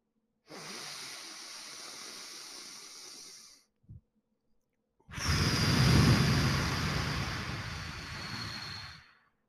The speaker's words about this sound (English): Focus on flowing between deep inhales through your nose into your belly for about 3 to 5 seconds and full exhales through your mouth for 3 to 5 seconds. Here's what it sounds like.